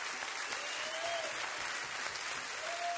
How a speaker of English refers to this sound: Clap for him right now.